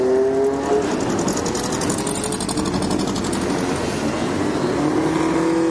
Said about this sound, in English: Many of these cars I've seen before at Mossport over the years. There goes an MGB.